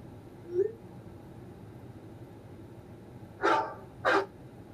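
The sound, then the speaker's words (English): A phone's text message alert made from a real dog's barks: two sharp, fairly loud barks in quick succession over a quiet room hum, with a faint small yelp earlier. “That's my text.”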